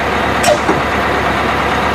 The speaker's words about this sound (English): Looks like the bus is here, dude.